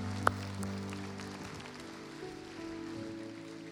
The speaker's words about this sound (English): Come on, let's do three fingers. Ready? Four fingers. Here we go. Five fingers. Let's just clap.